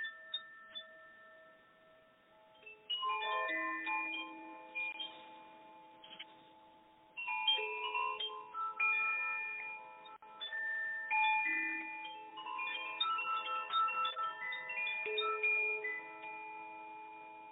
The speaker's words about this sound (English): So, dear listeners, I invite you to just close your eyes for a moment, as long as you're not driving or anywhere we're operating a vehicle. And just listen for a moment to these chimes.